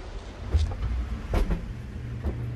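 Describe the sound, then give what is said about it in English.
A steady, low mechanical hum from an environmental growth chamber in an insectary at a Pioneer corn and soybean product development building in Johnston, Iowa, drones throughout, with a few soft knocks and clicks breaking in at intervals. No one speaks. “That humming is from an environmental growth chamber.”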